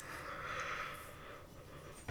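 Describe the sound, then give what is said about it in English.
A long, drawn-out, breathy yawn stretching for about two seconds before ending in a short, sharp exhale. “Okay, now you're making me want to yawn.”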